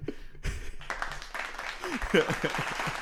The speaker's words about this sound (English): I like how I'm doing all this preaching and that was like the one thing you said and you get a clap.